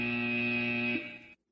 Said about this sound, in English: I'm going to hit the buzzer every 3 so I don't drive you guys crazy.